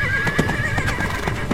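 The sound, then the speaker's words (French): A horse whinnies with a high, wavering call while hooves clip-clop in a quick, steady rhythm, all at a fairly loud, even level with no talking. “Selon les indications du capitaine à fond la forme, le trésor de Jean Bar se situe sur l'île de Fuganza, une île merveilleuse uniquement peuplée de chevaux et de poneys.”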